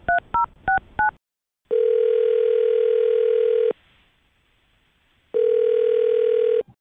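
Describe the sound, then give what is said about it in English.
Four quick beeping keypad tones dial a man's phone number for the show Brook and Jubal in the Morning, then a long, steady, buzzy ringback tone sounds twice with a silent pause between the rings. No one speaks. “Well, I'll dial his phone number right now”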